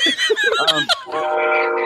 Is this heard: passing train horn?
yes